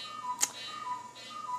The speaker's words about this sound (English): Well, I forgot to turn off the cuckoo clock again. So 1 week I get photobombed by the dog, and last week it was the cuckoo clock, and here it is again today.